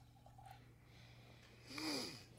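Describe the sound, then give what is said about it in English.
A single sharp, airy sniff inhaled from a bottle, a brief breathy rush near the end of an otherwise quiet stretch with a low steady hum underneath. “Did he sniff her? Oh my god, it smells terrible.”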